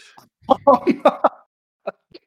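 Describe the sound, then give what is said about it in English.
A fairly loud fit of coughing after a big drink of water: several quick sputtering coughs run together, then two lighter coughs after a short pause. “Still coughing.”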